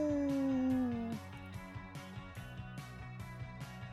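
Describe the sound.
A person imitates a wolf howl with one loud, sustained, slowly falling cry lasting about a second, then a steady rhythmic musical beat takes over.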